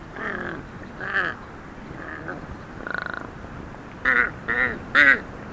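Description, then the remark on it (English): A huge Tibetan crow hopping across a high field gives a series of about seven odd, harsh croaks at irregular intervals, one with a buzzy rattle, the last three louder, over faint outdoor background. “I remember being startled by the bizarre sounds made by a huge Tibetan crow hopping across a high field.”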